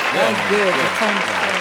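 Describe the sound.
Steady audience applause fills the whole clip at a loud, even level, with voices talking or calling out over the clapping.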